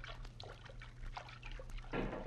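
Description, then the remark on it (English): Water splashing and sloshing as two men wade through a river to its bank, soft irregular swishes with a louder splash near the end, fairly quiet, with no talking. “Now we are at the bank. Make no noise, Pancho. Now, crawl out of the water.”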